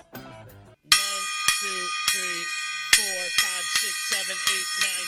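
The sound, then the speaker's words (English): After a brief voice, a bell is struck ten times as a 10 bell salute on the Hold the Sarcasm show, loud strikes in a quick, steady rhythm, each ring overlapping the next. “The 10 bell salute right here on Hold the Sarcasm.”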